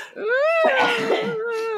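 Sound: sneeze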